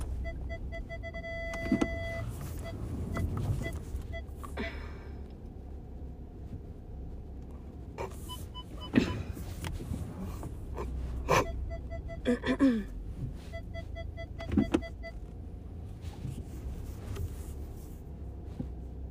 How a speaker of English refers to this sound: I see a car coming out. I'm probably gonna wait and take that spot.